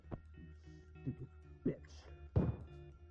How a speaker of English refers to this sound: Gunshot? What? I love that gunshot sound. I know that's weird, but like, ugh. I love the muffled gunshot sound. It was so cool. Because I didn't know what I was expecting. How does a gun sound behind a door? That's how a gun sounds behind a door.